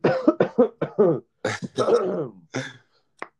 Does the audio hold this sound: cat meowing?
no